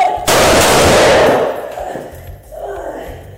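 A sudden, loud burst of gunfire erupts during a confrontation with a woman holding scissors, the rapid shots blurring into a harsh crackling roar that fades over about a second, followed by a faint voice and low rumbling.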